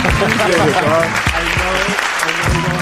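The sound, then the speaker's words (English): A burst of applause from a small group, dense overlapping claps filling the whole stretch, with voices talking and calling out over it. “Give me the fucking claps, bro.”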